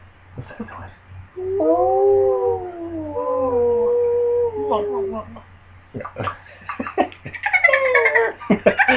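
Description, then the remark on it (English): Long, wavering whale calls picked up on sonar glide and moan over a low steady hum, followed by a burst of shorter rising squeals and chirps toward the end, fairly loud. “Sounds like whales.”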